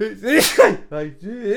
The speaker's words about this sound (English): I'm going to sneeze.